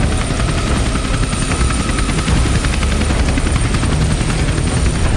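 A helicopter's rotor thumps steadily over a loud, continuous engine whine, constant for the whole stretch, with no voices; a helicopter waiting as Wayne Manor burns.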